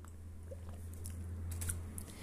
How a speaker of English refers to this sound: I'm just going to take a sip.